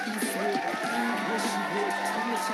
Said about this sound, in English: Hey, round of applause to my mans right here.